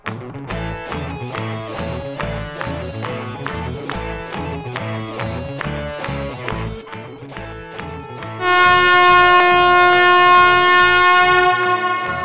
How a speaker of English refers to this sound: Sorry to startle you, but what you just heard was the air horn blast, which signals the beginning of the Great Taste of the Midwest each year.